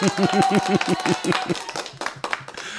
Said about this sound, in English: Well, I've got this little controller where I can hit those little buttons. If it makes you feel good, I'll hit the applause button again.